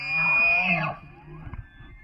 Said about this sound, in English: Now, whether you're visiting Great Smoky Mountains National Park, Rocky Mountain National Park, or Olympic National Park, the best time to go in search of bugling elk is right around dawn or dusk.